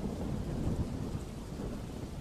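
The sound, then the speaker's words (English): Steady, dense rumbling wash of heavy rain drumming on the roof of a tall church, the raindrops pattering with an ambient reverb, over a low thundery undertone and no voices. “This silence passes where all we hear is the sound of the heavy rain hitting the roof of the church.”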